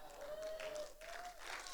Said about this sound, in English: Okay. Y'all just gave God a golf clap.